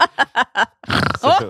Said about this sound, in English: So sorry, I've got the Rattler burps again. Okay. Oh, that was a deadly one.